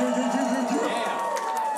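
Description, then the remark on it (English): A big live audience at a show in Chicago cheers and whoops in a steady, dense wash of crowd noise, with many overlapping voices for a couple of seconds. “We got a big crowd in here”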